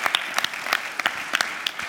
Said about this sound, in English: We're going to leave it there, but let's give them a clap. They were so honest. That was awesome.